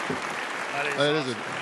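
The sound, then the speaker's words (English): A crowd applauds in a steady, dense wash of clapping that holds for the whole moment, with a brief voice rising over it partway through. “And oh, well, thank you, crowd. The crowd really likes that, eh?”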